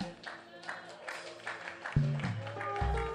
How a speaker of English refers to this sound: And please clap your hands and celebrate Jesus.